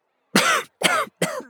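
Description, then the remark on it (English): Three harsh coughs in quick succession, each a short raspy burst with brief pauses between, loud and dry with no talking around them: Bok Bok coughing up smoke after being engulfed by a dragon's blazing burst of fire. “Bok Bok coughed up smoke.”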